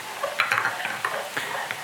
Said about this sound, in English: And then this is where you add your 2 tablespoons of hot tap water. So as you can hear, I'm at the sink and I have my 2 tablespoons of hot tap water. And I'm adding that in.